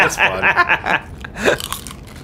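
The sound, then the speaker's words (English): Crunching on coconut chips, slow cooked in coconut oil with sea salt: a quick run of crisp, bright bites in the first second, then softer chewing with a brief voiced sound mixed in. “They're coconut chips.”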